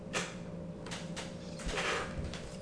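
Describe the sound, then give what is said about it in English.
A chair creaks and groans in a few irregular, scraping bursts, with faint shifting noises between them and no one talking. “I got the creaky chair.”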